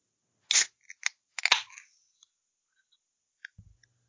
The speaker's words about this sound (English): Well, so I am cracking open a sparkling water with orange and grapefruit flavors. I'm going to crack it open for a little ASMR here on RSVP.